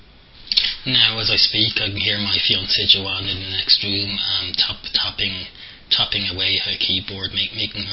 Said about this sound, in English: I believe she's typing some assignments for college.